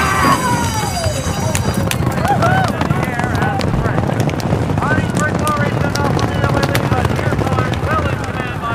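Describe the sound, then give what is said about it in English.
Racehorse hoofbeats from two horses running side by side down the stretch of a race pound in a rapid, dense flurry, loud, over steady wind rumble, with indistinct voices calling out now and then. “I can hear the footsteps of my horse, the footsteps of his horse.”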